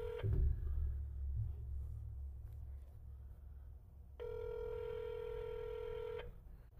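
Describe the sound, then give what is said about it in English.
An outgoing phone call rings unanswered: a steady electronic ringback tone sounds for about two seconds, heard over a low engine rumble from inside a moving car, with no one picking up. “It probably ain't working. Oh, we're sprinting now. He ain't answering”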